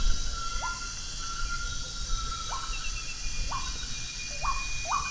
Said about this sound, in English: At dusk, with thunder from the receding storm still heard in the distance, we canoe along the edge of the lagoon. We marvel at the plaintive whistled songs of two great tinamous.